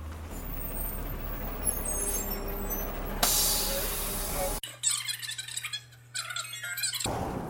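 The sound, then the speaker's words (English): A city bus pulls up to a waiting passenger with a low engine rumble, then its air brakes release a loud, sharp hiss before the idling drone continues. “And here comes the bus.”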